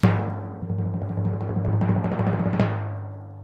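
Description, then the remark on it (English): A rapid, sustained drum roll sound effect rumbles for about two and a half seconds, then ends in a sharp cymbal-like crash that rings and fades. No one speaks. “hit the drum roll.”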